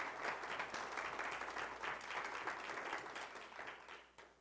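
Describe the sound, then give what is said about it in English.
An audience claps steadily for the Lord, a dense, bright wash of many hands that holds level for several seconds, then thins and fades toward the end. “Give him a good hand clap.”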